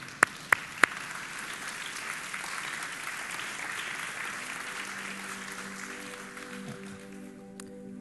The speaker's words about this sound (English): Shall we all rise? And let's clap for the glory of God, shall we?